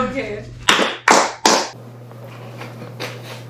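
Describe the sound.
Three loud, sharp bursts of group clapping in unison as an intro, evenly spaced in a quick rhythm, with faint voices murmuring before and after and a steady low hum underneath.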